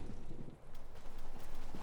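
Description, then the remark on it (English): Horse hooves clip-clop in a steady, rapid rhythm, moderately loud, as men ride on horseback, with a faint breezy hiss behind them and no talking. “They ride as if they have lived their whole lives on the back of a horse.”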